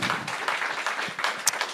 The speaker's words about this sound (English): Yeah, let's just give that clap.